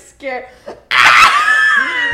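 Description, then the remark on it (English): A person screams right into the microphone: a loud, harsh, sustained scream that bursts in abruptly and lasts over a second, after a couple of brief murmured vocal sounds. “Screams directly into the mic.”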